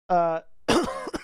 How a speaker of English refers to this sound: as I cough my lungs out.